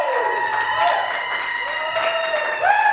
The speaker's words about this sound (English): New Orleans, clap it up.